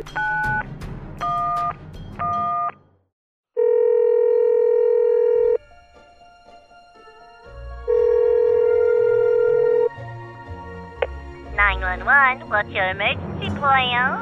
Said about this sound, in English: I went to the phone and I did what any logical person would do. Call 911.